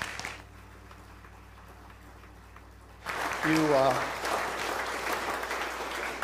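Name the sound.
audience applauding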